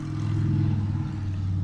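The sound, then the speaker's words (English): A motorcycle engine drones by with a steady, loud, low harmonic hum that dips slightly in pitch partway through. No one speaks over it. “And there's that motorcycle going by.”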